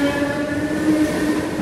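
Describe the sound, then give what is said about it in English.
A Dublin train in August 1985 rolls steadily along the rails with a continuous, fairly loud rumble and a low droning hum, with no voices. “these two boys sitting on a Dublin train in August 1985 will become front page news.”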